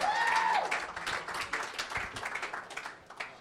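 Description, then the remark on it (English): An audience applauds a guest with a dense patter of many overlapping claps, a brief rising whistle cutting through at the start, before the clapping thins and fades out. “So let's Speaking give a of warm, native warm, friendly, this whole marketing round of applause for Mr. Todd Wheatland.”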